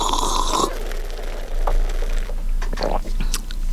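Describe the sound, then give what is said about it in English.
A loud slurp of hot coffee drawn noisily from a cup, a breathy hiss lasting under a second, followed by quieter mouth and swallowing noises. “I got to slurp this thing.”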